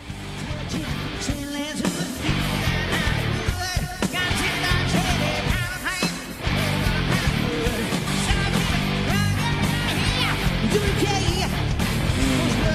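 Loud live rock music from a band's concert video plays continuously, with the singer hoarsely yelling lyrics over dense distorted guitars and pounding drums, the words hard to make out.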